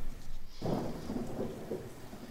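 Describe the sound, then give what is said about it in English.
Steady rain hisses throughout, joined after a brief moment by a low, rolling rumble of thunder that lingers in the background. “I glanced sideways out the window again. Her perfect penmanship, her personalised stationery, those measured words. I scowled at the rain.”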